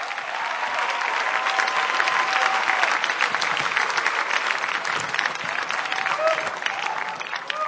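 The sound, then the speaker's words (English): A large audience applauds steadily as a clap offering to Jesus, the dense clapping sustained and loud for several seconds, with faint voices and tones mixed in beneath the applause. “Give a mighty clap offering unto Jesus.”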